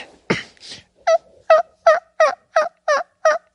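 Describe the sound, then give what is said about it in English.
A person imitates a turkey with their mouth, without a turkey call device, opening with a couple of rough squawks before a steady run of eight evenly spaced, high yelping notes, each sharp and loud with clear silences between. “Do your turkey call with no turkey call.”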